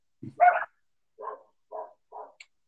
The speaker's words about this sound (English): I apologize for the dogs.